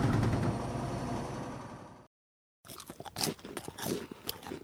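Crunchy food is chewed on the mic, with sharp, irregular crackling bites after a rumbling stretch of noise and a brief pause of silence.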